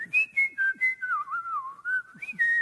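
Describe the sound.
A person whistles a bird-like song, imitating the song of a bird heard outside every night: a wavering tune that glides between high and middle pitches, with quick chirpy bursts at the start and end, fairly loud and alone.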